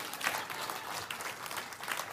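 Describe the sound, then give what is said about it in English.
Steady applause from an audience, a dense wash of many hands clapping at moderate volume with no one speaking over it. “Oh, you can clap. I don't want to cut that off. Go ahead and clap.”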